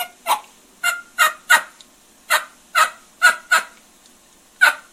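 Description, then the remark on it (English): A diaphragm mouth call with latex reeds imitates an excited turkey hen, producing about nine loud, raspy yelps in quick, slightly uneven succession, with no talking. “And she gets a little bit more excited.”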